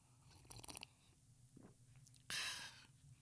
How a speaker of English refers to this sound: And so we're going to have our first taste of this particular coffee. I'll reveal the name of it and the whole thing on Friday to you. Exclusive taste test coming your way on Friday. Hang on just a second. I'm going to do a consumable slurp. Hold on.